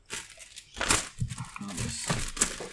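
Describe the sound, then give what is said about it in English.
A paper envelope crinkles and rustles in a run of irregular crackling bursts, with one sharper crunch near the start and quieter handling noise continuing throughout. “I'm glad I picked the sneakiest, least crinkliest part.”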